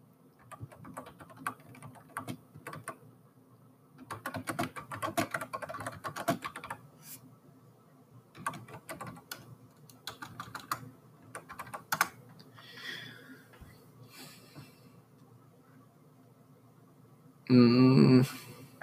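Steady typing on a computer keyboard, with irregular bursts of clicking keys and short pauses between flurries, ending in a louder clattering burst.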